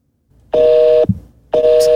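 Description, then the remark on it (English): A telephone dial tone plays from a phone's small speaker held up to a microphone: a steady, tinny, two-pitched hum in two loud bursts separated by a brief pause, with no one talking; the phone bumps the microphone at the very beginning. “You can hear because it's coming out of my phone. I was just holding the phone up to the microphone.”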